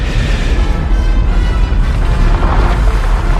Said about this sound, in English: That's still a decent explosion.